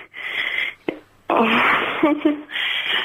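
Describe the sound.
A harsh, buzzing alarm sound effect blares in loud, noisy bursts: a long blast, a short gap with a brief blip, then a longer blast with a wavering, voice-like tone near the end.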